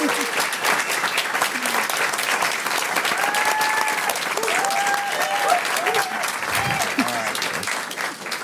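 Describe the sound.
Sustained, dense audience applause fills the whole stretch at a steady loud level, with scattered voices and cheers rising faintly above the clapping.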